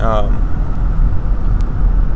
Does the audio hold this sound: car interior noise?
yes